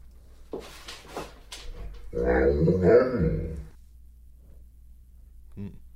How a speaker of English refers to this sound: What do you hear, if anything, this dog saying?